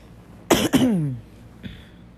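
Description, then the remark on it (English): Two sharp coughs in quick succession trail off into a raspy, voiced exhale, followed by a fainter third cough a moment later. Nobody speaks, and the background is quiet. “Well, I'm coughing so much, this feels weird.”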